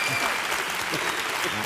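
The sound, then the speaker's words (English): An audience claps steadily, a dense wash of many hands filling the whole moment at moderate loudness, with faint voices mixed underneath. “I'm sorry that we killed time with the applause.”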